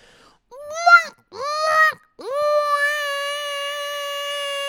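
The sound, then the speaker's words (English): A voice imitates a seagull call: two short, bright, wavering squawks, then a long, loud, nasal cry that rises and holds steady until the end. No words are spoken. “All right, the old seagull.”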